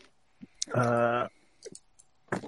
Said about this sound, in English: Okay, so I've got a con of 15. I've got dice that have decided to go everywhere.